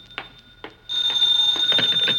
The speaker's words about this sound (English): Now the phone.